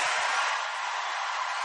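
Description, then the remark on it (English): A crowd makes noise together, a steady, dense wash of cheering and shouting that holds at an even loudness throughout, with no single voice standing out. “Yeah, quite the crowd.”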